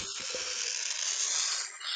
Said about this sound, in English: Who's shredding paper? I'd blame him, but he's not. That was me. Sorry. I forgot to mute.